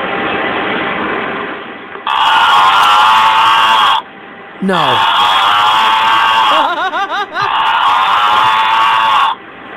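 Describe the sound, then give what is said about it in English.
A mooing carton toy with 'Moo' written on its side is opened, letting out a loud, harsh, buzzy moo in three long drawn-out bursts, separated by short gaps with quick warbling pitch sweeps. A voice briefly speaks. “Someone opening the Mooing cart.”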